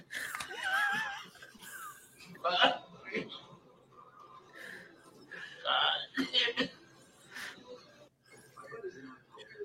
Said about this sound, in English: He's just coughing.